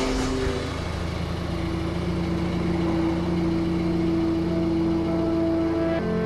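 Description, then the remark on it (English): A car engine turns over and catches, then runs with a steady rumble and hum before pulling away. Nobody speaks. “He says something unnecessarily cruel, cruel to me, cruel to her, so shocking it's funny, and gets into his car.”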